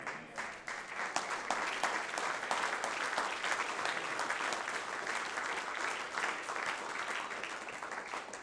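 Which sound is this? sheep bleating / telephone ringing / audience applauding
audience applauding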